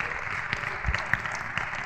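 An audience applauds steadily, a dense wash of many hands clapping with a few sharper claps popping out, sustained at an even, moderate level throughout.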